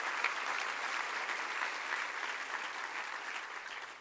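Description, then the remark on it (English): A steady wash of many hands clapping, dense and continuous for about four seconds, bright and crackly without distinct individual claps, fading slightly at the end. “And I clap my hands tonight for the man of God that prayed for me.”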